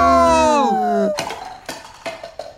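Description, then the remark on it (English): A descending whistle-like tone slides down, then a glass artifact, knocked over as a crowd rushed in, hits the ground and bounces several times with bright ringing clinks that fade without shattering. No voices. “It should have broken when it was knocked onto the ground, when everyone rushed in.”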